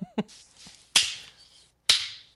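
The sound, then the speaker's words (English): A slow clap: three sharp hand claps spaced about a second apart, each a crisp, bright smack with a brief ringing tail, with no talking between them. “That's a slow clap for you.”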